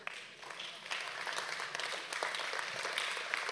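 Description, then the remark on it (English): An audience, standing, claps for the Lord in a dense, sustained wash of applause that swells slightly after the first half second and holds steady, with scattered sharper claps poking through. “Can everyone just stand up and give the Lord a clap, please?”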